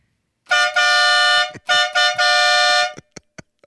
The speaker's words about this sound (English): Because I have a horn right here attached to a drill. And if you want noise, I'm ready to make noise.